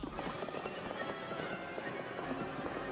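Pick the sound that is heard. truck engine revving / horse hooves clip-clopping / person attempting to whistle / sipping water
horse hooves clip-clopping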